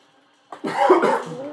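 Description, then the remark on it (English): A single fairly loud cough, coughed into another person's arm, bursts out after a moment of near silence, its rough, breathy rasp trailing off over about a second. “Why did you cough into my arm?”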